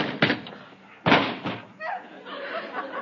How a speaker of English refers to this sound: I didn't hit him. He ran into the door.